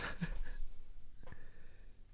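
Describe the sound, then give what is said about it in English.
A female cat named Athena sniffs softly, a few quick airy puffs at the start and one more short snuffle a second later, all faint over a quiet background with a thin steady whine. “She's just sniffing.”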